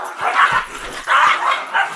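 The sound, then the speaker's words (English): A dog barks excitedly and loudly several times in quick bursts, with short yelping, whiny edges between the barks and no talking. “Dog's going nuts over here.”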